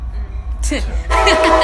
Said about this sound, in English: There goes the train.